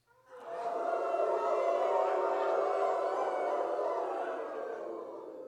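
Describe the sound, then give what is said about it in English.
A group of people imitate a wolf howl together, a loud sustained chorus of overlapping voices holding a long steady tone that fades slightly toward the end. “So I heard you guys a little bit earlier, but give me a howl.”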